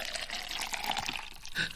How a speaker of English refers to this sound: I need to do a second half pour. Here we go.